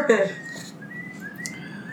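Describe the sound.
A person whistles a thin, wavering tune close by, the pitch sliding up and down across a few shaky notes, with a brief burst of voice at the start.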